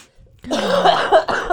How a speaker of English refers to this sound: Now is it recording? Did you get that cough?